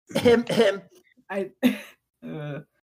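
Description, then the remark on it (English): A voice acts out a theatrical fit of coughing and throat clearing for Vladimir, a lobster-folk character coughing into his claws to get the siren's attention: two harsh, voiced coughs, then a couple of shorter gruff bursts and a drawn-out 'ahem', fairly loud. “Vladimir coughs into his big gross claws.”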